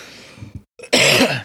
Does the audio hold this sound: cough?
yes